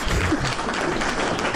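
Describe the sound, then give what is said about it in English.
A crowd cheering sound effect played at the end of a radio show: a steady, dense roar of clapping and hubbub that holds at an even loudness throughout, with no clear voices standing out. “I was going to have a good old crowd.”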